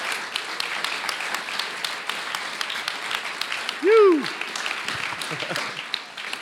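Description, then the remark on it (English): A church audience at Melbourne Lights Church applauds steadily in a dense, continuous patter of many hands clapping. Around the midpoint, a single voice briefly cheers or calls out over it. “Can we give these guys a massive round of applause?”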